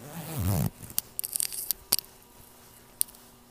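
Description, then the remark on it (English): After a brief voice at the start, a zipper on clothing is pulled, giving a few short, scratchy clicks and rasps in irregular bursts with a final lone click. “Oh my goodness, my zipper.”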